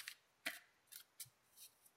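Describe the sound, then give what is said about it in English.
Quiet shuffling of a deck of cards: a handful of brief, crisp papery riffles and snaps arriving at uneven intervals, with no voices. “So you're watching me shuffle these cards, and then I just want you to tell me when to stop shuffling them, and then I'm gonna set the deck down on the table and then break it into two piles.”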